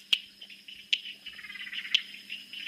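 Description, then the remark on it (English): A stonemason's toadlet (froglet) calls: three sharp, stone-like clicks spaced roughly a second apart, each with a bright high ring, over a steady high-pitched chorus of other frogs in the background, including a northern laughing frog. “That is the stonemason's froglet or toadlet.”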